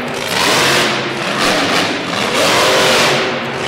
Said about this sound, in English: Wow, these monster trucks are coming in crystal clear.